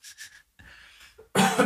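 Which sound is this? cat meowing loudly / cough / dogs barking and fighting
cough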